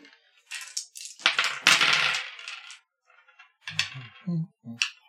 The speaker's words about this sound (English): Please bear with me a moment. It's a lot of dice back here.